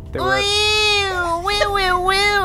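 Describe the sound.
A person imitates a goat's mating call with one loud, drawn-out nasal bleat lasting about two seconds. It holds a steady pitch, then wavers and warbles toward the end.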